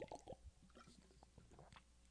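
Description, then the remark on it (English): A quiet swig of water: wet gulping and sloshing with a few soft clicks and squishy swallows over about two seconds, with no talking. “Gonna take a swig of water.”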